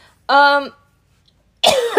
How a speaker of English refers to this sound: That ever happens to you guys? You start fucking coughing when you're speaking the truth?